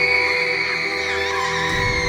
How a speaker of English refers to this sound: Her chapped lips cracked and tore as her mouth ripped open in a scream.